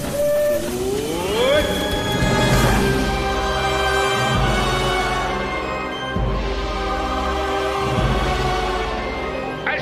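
The Disneyland Limited train at Disneyland pulls away on a grand circle tour of the Magic Kingdom with a steady loud rumble, rising whistle-like tones at the start and periodic heavy chuffing bursts as it gathers motion, with no talking.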